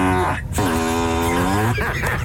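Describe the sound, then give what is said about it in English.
A novelty fart sound effect plays loudly from a Tesla car whose built-in sounds have been changed to fart noises: a brief buzzy blurt, then a longer, drawn-out low raspy tone with a slight pitch wobble, trailing off into a wet sputter. “Okay, so this is a guy going through his car demonstrating how he's changed everything in the car that makes a sound to fart noises.”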